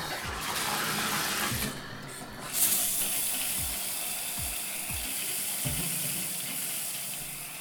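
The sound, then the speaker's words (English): A shower head runs steadily, its spray making a continuous, fairly loud hiss, with a few soft low knocks sounding at intervals underneath. No one speaks. “do you feel cleaner now, or do you feel like you're covered in all those microbes that came out of the shower head there?”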